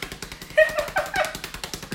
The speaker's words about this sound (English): By the way, y'all can't tell, we're literally slapping like a fucking, his ass. Like a fucking... We're slapping his ass. It sounds ass, like a helicopter.